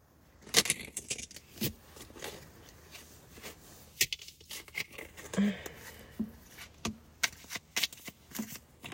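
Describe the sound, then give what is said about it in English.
Crisp card shuffling for a card reading, with repeated riffling bursts and soft slaps of the deck, irregular but steady across the whole stretch, with no one speaking. “Let me see. Let me shuffle.”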